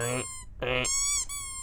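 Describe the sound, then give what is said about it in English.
Two loud, nasal duck quacks in quick succession, each followed by a ringing, whistly tone, clear with no talking. “You ready for What the Duck? Yeah. Quack, quack, quack.”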